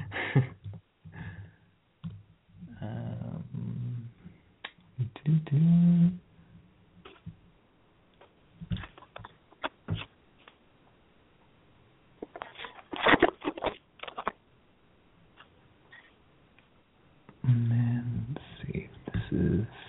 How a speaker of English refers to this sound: Sorry, you hear me typing because I have to just pull it up on my computer.